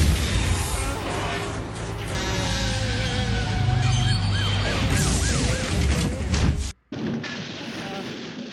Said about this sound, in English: Crash, crash, crash! Roger that! What is your location and what have you actually crashed into?